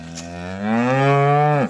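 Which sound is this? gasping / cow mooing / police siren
cow mooing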